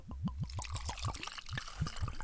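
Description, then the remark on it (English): Irish whiskey glugs out of a bottle into a glass in a quick run of rhythmic, rising gurgles, fairly loud, with no one speaking. “Yeah, let's do the pour.”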